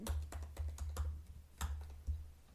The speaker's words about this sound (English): Oh no, I accidentally hit caps lock. Oh, it did pick up my typing sounds.